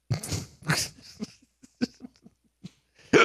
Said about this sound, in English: I got the hiccups now.